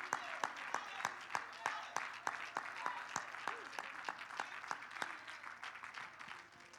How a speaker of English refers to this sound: Can you give the Lord a hand clap and a praise this morning?